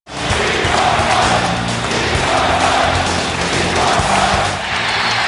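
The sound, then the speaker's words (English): A large arena crowd in Philadelphia, at a Sixers game late in the fourth quarter, stands and roars and cheers for an encore from Jordan in a loud, unbroken wall of noise that lasts the full five seconds, with voices swelling and shouting within the din. “A whole building standing and cheering.”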